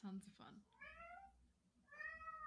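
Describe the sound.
A cat with separation anxiety meows twice, two drawn-out, whiny cries about a second apart, with a brief burst of a human voice just before the first one.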